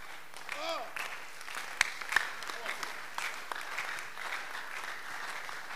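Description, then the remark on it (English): A church audience claps steadily during a sermon, a dense wash of many hands with a couple of sharper, louder claps standing out, while voices call out faintly within the applause. “Oh, those who are clapping, I see God blessing their lives.”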